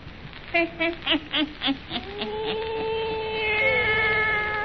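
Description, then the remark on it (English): Old Nancy's wise black cat meows in a quick run of five or six short, clear cries, then lets out a long, drawn-out yowl that wavers in pitch, fairly loud. “And now for our visit to old Nancy and her wise black cat.”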